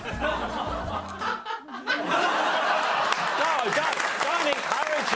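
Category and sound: crowd, hands clapping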